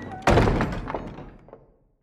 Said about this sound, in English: He's hauled back to the camp and thrown on the floor of the stockade, the door slammed and locked behind him.